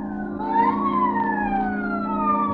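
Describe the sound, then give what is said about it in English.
A police prowl car siren wails with a rising then slowly falling tone, sustained and fairly loud over a steady low engine hum, with no voices, in Hollywood after midnight. “The nightclubs close up one by one, but now and then the police whistle and the prowl car siren serenade the sleeper.”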